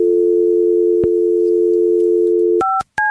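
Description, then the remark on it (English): A steady, loud telephone dial tone on an outside line hums for a couple of seconds, broken by a brief click, then two quick touch-tone beeps as a number starts being dialed. “give me a line out.”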